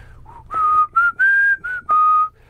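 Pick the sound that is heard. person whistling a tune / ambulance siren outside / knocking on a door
person whistling a tune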